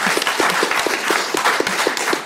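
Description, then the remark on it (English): A round of applause from a crowd for a fundraising total of €13,500, with dense, steady clapping that holds at an even, fairly loud level for a couple of seconds and has no voices over it. “There was people getting waxed, and I raised €13,500, which was round of applause for that.”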